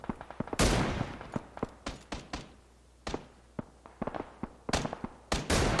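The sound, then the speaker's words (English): Irregular bursts of gunfire to the north crack across the whole stretch, some shots sharp and loud, others softer, with brief pauses between volleys and no voices. “There's more gunfire to our north, it sounds like.”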